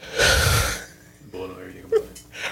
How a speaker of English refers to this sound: Yo, the yawn is hilarious. I can't get over the yawn. I seriously can't get over the yawn.